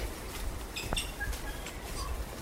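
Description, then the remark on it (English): Faint birdsong from several wild birds in a forest sanctuary: brief high chirps and short whistles scattered over a soft outdoor background hiss, with no one speaking. “Sounds like the other birds that are already in the sanctuary are the welcoming committee for the 37 tikē that are about to be released here.”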